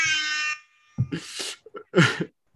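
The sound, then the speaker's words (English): A voice imitates a DJ air horn for a DJ: a loud, sustained buzzy blast for about half a second, then after a pause several rough, choppy vocal bursts. “Yeah, that's my that's my air horn, like for ….”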